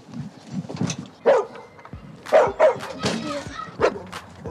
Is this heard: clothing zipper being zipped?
no